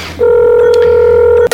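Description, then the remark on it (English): A phone's dialing tone sounds as one loud, steady electronic beep held for over a second as a call is placed, with a faint low hum beneath it and no talking. “I'm gonna call Paulina. Skyping, zooming, facing, timing.”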